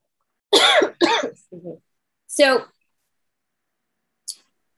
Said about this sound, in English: I need to pause a sec. I'm going to cough.